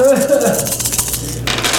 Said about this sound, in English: I'm going to roll his only edge. Pretty sure I have 21. One hit on 21 dice. No, I'm rolling that.